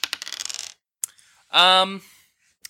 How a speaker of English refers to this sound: I rolled a 6, so I'm going to keep that. 6 is also very good, so also smart.